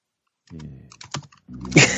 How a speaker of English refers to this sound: Yeah, is it quite loud? Yeah. Should we just wait for you to finish typing? Yeah. She keep typing.